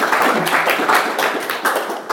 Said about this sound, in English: Well, let's have a clap.